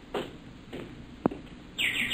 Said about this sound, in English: It's a canary. Well, that's the bird we heard chirping in here, remember?